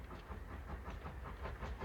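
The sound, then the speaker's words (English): A train rolls along the tracks with a steady low rumble and regular clacking beats from the wheels, heard alone at a moderate, fairly even level. “and when a train starts out from being stopped, and there is just one small brick in front of its wheel, it has a really hard time getting going.”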